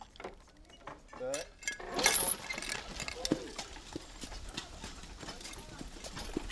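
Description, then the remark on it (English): Horse hooves clip-clop in a steady, even rhythm as a horse pulls a cart along, clear, with a short whinny early on and some rattling from the cart. “In the days before motorised transport, horses and carts were still in regular use to carry the mail.”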